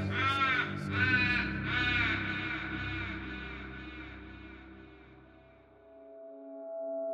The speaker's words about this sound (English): An old Chevy pickup comes rattling along, and when it stutters in its progress and backfires, the crows cackle madly and take to the air and leave the trees as naked as skeletons.